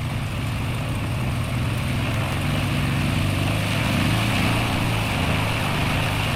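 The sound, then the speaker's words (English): A propeller aircraft's engine roars steadily during takeoff, a loud continuous drone with a low throbbing rumble and broad hiss, swelling slightly midway through. No one speaks. “Shut up and help me get this bird flying.”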